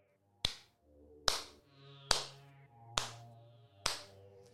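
Five slow, sharp hand claps at an even, deliberate pace, each a crisp smack that rings briefly, over a soft sustained musical tone; a painter clapping his hands in mock delight.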